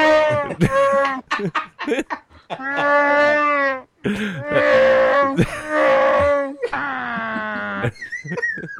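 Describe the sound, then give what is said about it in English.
A man makes a series of loud, throaty growling moans like Chewbacca's roar, rising and falling in long sustained bursts with short choppy grunts between them, ending in a higher wavering wail. “He totally sounds like Chewbacca.”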